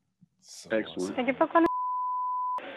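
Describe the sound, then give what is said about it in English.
A single steady electronic telephone beep as a call to a buffet restaurant is dialed, sounding for about a second right after a burst of talking, clear and fairly loud, then voices pick up again. “So I'm dialing up, and we won't hear it ringing.”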